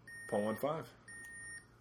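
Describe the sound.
A sustained electronic beep from a breathalyzer during a breath alcohol test, steady and fairly quiet, sounds in two long stretches; a voice calls out briefly over the first, and the second rings on alone. The reading is 0.15, almost double the legal limit.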